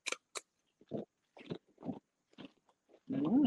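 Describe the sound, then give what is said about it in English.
Loud crunching of someone biting and chewing Funyuns wavy onion-flavored chips, a series of sharp bites followed by rhythmic munching, with no talking. “Y'all hear that crunch?”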